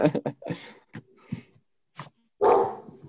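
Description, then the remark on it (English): A dog barks in the background several times in quick, uneven bursts, ending with a louder, longer bark, with brief gaps of quiet between them. “As my dog's barking in the background.”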